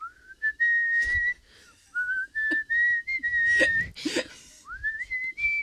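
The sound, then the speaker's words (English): A person whistles the melody of a late-1980s or early-1990s international rock hit, holding long steady notes with upward slides between phrases, broken by a few breathy puffs and soft clicks. “Okay, I'm going to whistle it, ready?”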